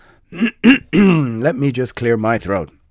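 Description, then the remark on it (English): A loud voice clears its throat in two short, rough bursts, then slides into drawn-out wordless vocal sounds with gliding pitch, like a warm-up before singing. “Let me clear my throat.”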